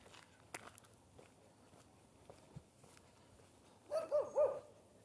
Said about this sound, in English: There is another dog. A dog is not a bird.